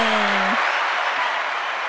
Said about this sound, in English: Oh, the crowd goes wild. The crowd goes wild.